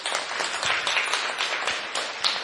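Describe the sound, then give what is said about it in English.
A crowd applauds the teacher at the end of a year-long weekly Leadership class at TKG Academy, many hands clapping in a dense, continuous crackle with no pauses or voices, holding an even loudness throughout. “So yes, please, a big round of applause.”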